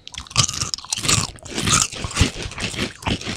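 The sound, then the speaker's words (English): Loud, crisp crunching of sour cream and onion kettle cooked potato chips, manufactured for Frito-Lay, being chewed: several sharp bites in an uneven rhythm with bright crackly bursts and no talking. “And they're like kettle cooked chips. They're real crispy.”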